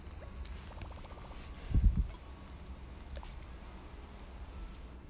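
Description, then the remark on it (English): Soft, steady rain on an island in a video game patters continuously at low volume, a gentle even hiss with faint scattered ticks, broken once by a brief muffled low thump partway through. “It's like raining in my island.”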